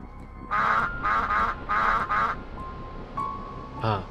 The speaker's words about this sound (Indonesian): Bila dia tengah jalan pergi dapur tu, tiba-tiba dia terdengar bunyi itik.